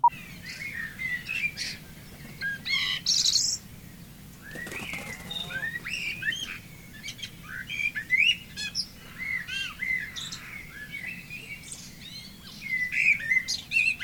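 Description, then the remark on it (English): A recording of a dense dawn chorus of many birds singing and chirping at once, overlapping calls and trills filling the air continuously, with a soft low rumble beneath and no voices. “We used to call it the Dawn Chorus. Thousands of birds, hundreds of birds.”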